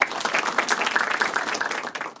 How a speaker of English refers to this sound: Golf clap.